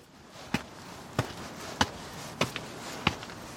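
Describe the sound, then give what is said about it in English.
Footsteps climbing the 43 steps up to the front door of a house built into the side of a steep hill, at a slow, steady pace: five firm, crisp thuds roughly half a second apart, plus one faint extra scuff, over a quiet background with no talking. “That's me walking up the steps to their front door.”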